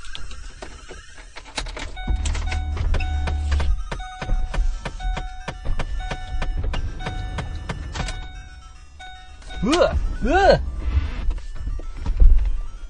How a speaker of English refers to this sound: Oh my gosh, it's so hot. Right. Let me roll down windows on both sides of the car. Maybe that'll help.